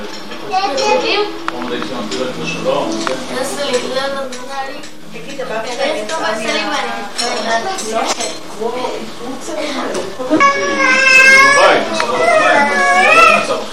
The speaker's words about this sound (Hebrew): זה לא נעים לו כנראה אבל הוא בוכה בגלל זה הוא בוכה הוא לא רוצה שיפתחו לו את היד